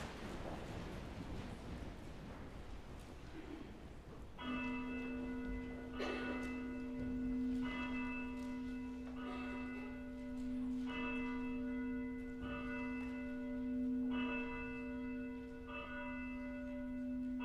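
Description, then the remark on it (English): Church bells ring steadily before a worship service, a sustained resonant tone with strikes recurring roughly every one to two seconds, heard clearly against a low background with no talking. “The bells will call us to worship.”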